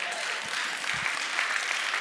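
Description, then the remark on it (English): An audience claps together during a sermon, with the preacher clapping along, in a dense, steady wash of applause that holds at an even loudness across the whole stretch, with no voices rising above it. “And I'm clapping with you.”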